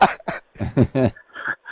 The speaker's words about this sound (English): Yeah, I'm just clearing my throat because, you know what bloody milk and cream and stuff does, yeah?